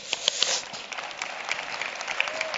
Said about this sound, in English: You can clap. Yes, there you go.